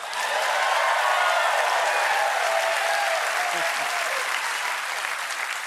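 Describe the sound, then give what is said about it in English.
A studio audience breaks into sustained applause, a dense wash of many hands clapping at steady volume for several seconds before tapering slightly at the end. “I want you to clap in here if you know someone named Mike or Michael Johnson.”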